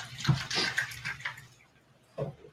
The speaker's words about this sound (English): So I'm just like, I'm just going to pour some water and make him drink it and see what he'll do out of fear, right?